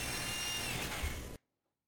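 An old quarter drill bores a 1-inch hole in an RV roof for a double cable entry gland, with a steady, loud grinding whine, running for about a second and a half before stopping abruptly into silence.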